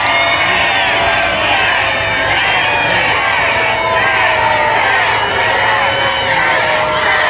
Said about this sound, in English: Okay, so and it was a sea of people. A sea of people. They're yelling shame. They're freaking out.